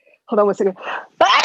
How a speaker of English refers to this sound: Bless you. Allergies.